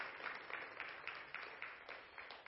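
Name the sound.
audience applause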